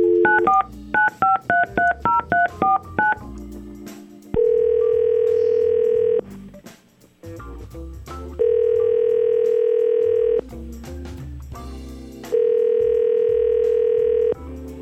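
A quick run of about a dozen touch-tone dialing beeps, followed by three long, steady telephone ring tones separated by pauses, loud with no talking, as a man's phone is called.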